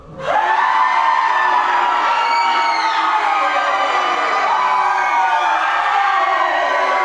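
A group of people screams together on cue after a countdown, at full volume, a sustained, dense wall of overlapping high-pitched voices that starts abruptly and holds loudly for about seven seconds.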